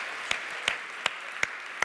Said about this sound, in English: Should we give a round of applause for Professor Potions?